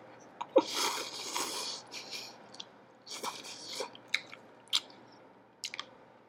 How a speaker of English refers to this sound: If you don't know by now, we're eating a lot of food. So if you don't like the sound of chewing or slurping, then don't listen.